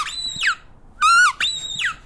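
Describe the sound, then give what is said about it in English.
Three shrill rubber squeaks from a Pharaoh plush dog toy from an Egyptian-themed BarkBox, each a bright harmonic whine that rises then falls, the middle one steadier and higher, with short quiet gaps between. “runs around the apartment, wagging her tail, chewing on the squeaker.”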